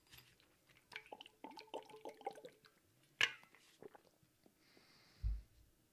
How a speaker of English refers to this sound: Hold on, I got to take a swig of water for this because it's that important.